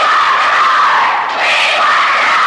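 A large crowd screams and yells in a dense, continuous roar that stays loud and high-pitched throughout, with a brief dip in intensity partway through.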